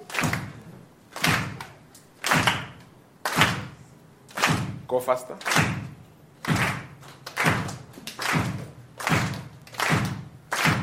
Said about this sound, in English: I want you, the big drum. Just beat it nicely. Only the big drum. Can we clap hands to that beat?